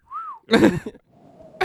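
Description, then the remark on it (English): A person imitates a whistle with a single short, rising-then-falling note, followed by a breathy, throaty burst and a softer hiss, all fairly quiet. “It didn't sound like a normal whistle.”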